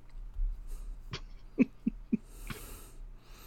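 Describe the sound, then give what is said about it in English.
A person's voice imitates a raven's caw for the Carleton University Ravens, with a few short, clipped calls in quick succession, moderately loud, over a quiet background. “And home of the Ravens, Cuckoo Cacaw.”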